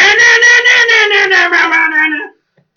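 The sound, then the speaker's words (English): A loud, drawn-out cat caterwaul, a strained wailing yowl that wavers and pulses while sliding slightly lower in pitch, lasting about two seconds before cutting off into silence. “Yeah, kill that cat.”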